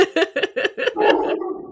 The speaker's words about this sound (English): Oh, cute little dog.